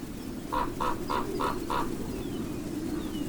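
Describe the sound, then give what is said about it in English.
Steady gusts of wind rush across the open New Mexico desert at early dawn while a bird gives five quick, evenly spaced, mid-pitched calls, with faint higher birdsong in the background from ravens, western meadowlarks and mockingbirds, and no talking. “In the early dawn, gusts of wind blow across the open landscape as ravens, western meadowlarks, and mockingbirds sing.”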